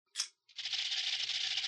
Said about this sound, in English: any last words before I spin the wheel?